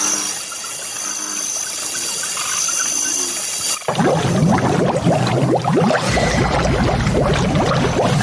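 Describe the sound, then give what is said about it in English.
Steady hiss gives way to loud, dense water bubbling and churning, a continuous frothy gurgle that swells suddenly partway through and keeps going without voices, after a hand pulled Braun down into the water with a mandible claw. “So like the water was bubbling, but now the water's red.”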